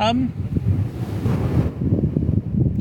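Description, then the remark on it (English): Fairly smooth waves wash steadily onto a beach under a clear horizon in a continuous, rushing roar, with heavy wind buffeting the microphone and a brief high tonal chirp at the very start. “We're looking out over the horizon, which is clear, and the waves are kind of fairly smooth.”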